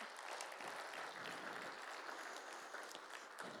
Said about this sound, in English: When we worship, we give him praise for everything he's brought us through. Yeah, come on, let's clap. That's good.